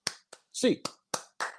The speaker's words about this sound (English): Hands up, Bruins fans. 8 clap time. And 1, 2, 3, 4, 5, 6, 7, 8.